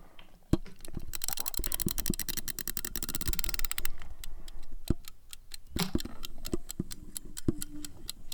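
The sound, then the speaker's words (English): A chat timer, set to 5 minutes, ticking: a quick burst of dense, sharp clicks at first, then slower, irregular ticks, crisp and fairly loud, with no one talking. “It's officially at 5 minutes. Sounds like it's going.”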